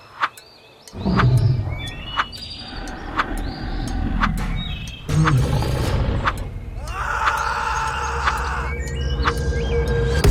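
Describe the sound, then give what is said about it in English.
A grizzly bear in a jungle, standing up on its hind legs, roars in long, rough, low growls, one burst soon after the other, loud and harsh, with a few sharp clicks and higher tones mixed in. “You make your way through the jungle and notice a grizzly bear nearby.”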